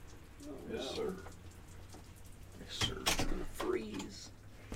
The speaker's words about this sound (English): It's rainy. It's raining.